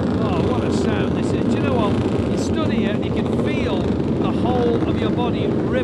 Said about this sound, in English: engine noise, it just rattles. It's incredible.